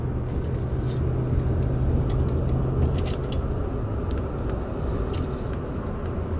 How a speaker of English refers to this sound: Taking little sips of my coffee this morning. That French roast rarely lets me down, I'll tell you. Chock full of nuts, my friends.